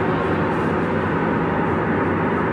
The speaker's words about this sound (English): Never realized, like, how loud the road actually is, like, how loud driving is. Until I guess you're recording audio while trying to drive.